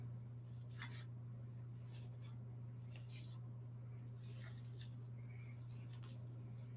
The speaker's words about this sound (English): All right, this is almost where I want it to be. I'm just gonna keep stirring it to make sure it just soaks up all of the water.